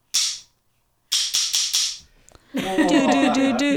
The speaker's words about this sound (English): I'm clapping at the beginning of all these podcasts. Like this. And this.